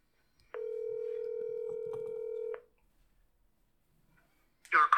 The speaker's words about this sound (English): Bruh sent me straight to voicemail. And this is why he never get on the podcast. I should have let his number play all the way through.